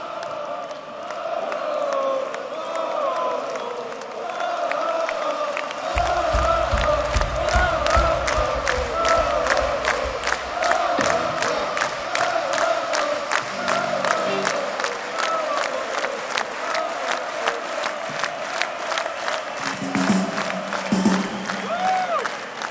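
A loud concert crowd roars and cheers after two songs end and the band stops, with steady rhythmic clapping and chanting voices running for the whole stretch without letting up.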